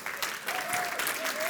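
An audience at a morning gathering claps steadily for a man whose 53rd birthday was last week, a dense patter of many hands that stays fairly loud throughout, with a faint sustained tone drifting underneath.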